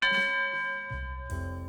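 A dinner bell rings out with a bright, sustained metallic tone, struck again near the end so the ringing swells with a deeper low hum beneath, loud with no voices.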